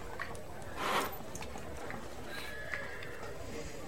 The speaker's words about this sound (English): you go outside and meet Coco, as he is chilling in the stables with a couple other horses and one pony.